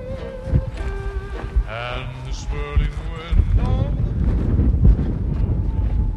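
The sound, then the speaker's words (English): Strong, dusty wind buffets outdoors with a low, rumbling roar that grows louder and steadier partway through, while a few high, wavering bleat-like cries sound over it early on. “It was windy and dusty.”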